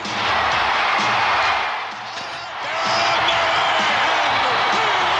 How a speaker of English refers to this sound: That's what I miss about wrestling these days. You don't get like the grands in the crowd just going absolutely batshit crazy.